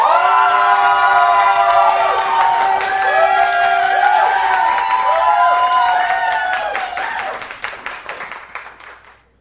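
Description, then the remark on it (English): An audience applauds to vote for the winner of a debate, bursting into steady applause mixed with loud cheering and rising, swooping whoops, the dense clapping holding strong before thinning and fading away over the last couple of seconds. “If you believe that the winner of this debate arguing for weaponizing Horny for Justice was Noah Heinrich, please applaud right now.”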